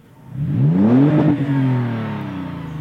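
A throaty SUV engine with an aftermarket sport exhaust revs up sharply, its rising harmonic tone peaking before easing back into a deep, rumbling idle. Loud and close, with no talking.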